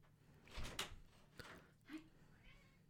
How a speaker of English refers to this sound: Your cat wants in now.